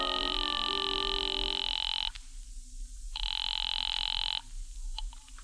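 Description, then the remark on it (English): A telephone call from a phone booth to a cafe ringing on the line: two long, steady electronic ring tones separated by a short pause, fairly loud over a low background hum, with no voices. “I waited around the lobby for a while, then stepped into a phone booth and called the tambourine.”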